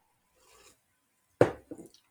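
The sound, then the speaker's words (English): Someone slurps from their first cup of coffee of the morning: a soft sip first, then a loud, wet gulping slurp followed by two shorter, quieter sucking sounds. No one speaks. “Slurp that puppy down.”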